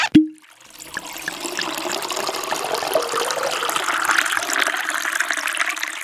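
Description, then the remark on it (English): A brief clink, then a steady stream of wine pouring into a glass for several seconds, the splashing gurgle continuous as the glass fills. No one speaks. “and this feels like a good segue for wine. To pour a beverage.”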